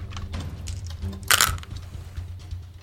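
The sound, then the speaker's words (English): Five dice rattle and clatter across a surface in a quick flurry of hard clicks, peaking in one sharp tumble midway, with a low steady hum behind and no talking. “Okay, 5 dice.”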